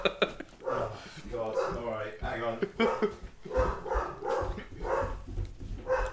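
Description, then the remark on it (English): A dog howls in drawn-out, wavering cries mixed in with people talking, the howl rising and falling for a few seconds at moderate loudness. “I love the fact that your dog howled at that moment.”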